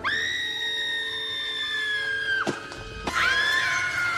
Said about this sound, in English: The lady that's with him. She screams all the time, and it's really annoying. I looked it up. She screams 71 times in this film.